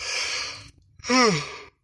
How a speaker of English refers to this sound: Gosh. Man, I thought I was getting better at not yawning when I record podcast episodes, but I haven't done it in a while, so I'm like out of my normal habit, I guess.